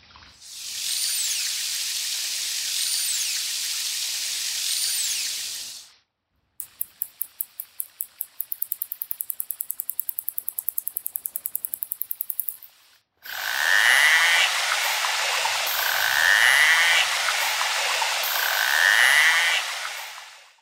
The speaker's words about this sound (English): They recorded the light whistling sound that narwhals use when speaking with each other, as well as the clicking sound